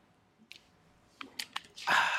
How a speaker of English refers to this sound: I haven't drank my water yet, so let me just get this out of the way. Opened like six times.